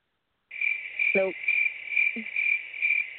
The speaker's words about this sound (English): Nope. Get out of here, cricket.